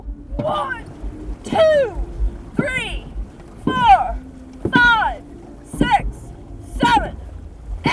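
A team paddling a boat hard for two minutes straight at the end of a practice, with rhythmic splashing strokes about once a second, each stroke punctuated by a loud, close shouted call over steady water noise.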